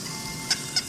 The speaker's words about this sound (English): And the squeaking is in the toy store? One of the display pieces. Oh, okay. There's like a little rabbit that's bouncing around in the toy store.